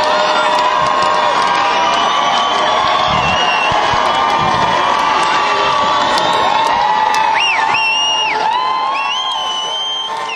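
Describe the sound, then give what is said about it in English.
A large concert crowd in Nashville, Tennessee cheers and shouts steadily, a dense roar of voices with high whoops and whistles rising over it, sustained loudly throughout as they call for the band to come back on stage for an encore. “are putting on a show that is unbelievable, and this crowd is demand for them to be back on stage.”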